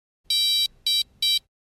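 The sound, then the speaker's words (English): A beacon powering on after its soft rubber side button is held down gives three bright, high-pitched electronic beeps indicating its flash pattern, the first held a little longer than the two quick ones that follow, evenly spaced and clear with no talking. “The sound will be followed by three short beeps to indicate the flash pattern.”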